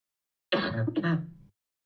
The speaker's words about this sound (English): My throat is quite dry and I'm going to cough quite a bit.